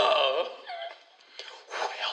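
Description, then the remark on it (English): Heavy, breathy exhales pushed into a microphone, loud, with a whimpering, voiced edge and a short lull before another strong rush of breath. No words are spoken. “Who's breathing?”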